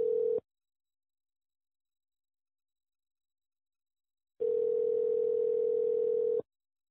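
A telephone line tone hums steadily: a brief tail of it at the start, then silence for several seconds before another clear, two-second tone sounds. No voices.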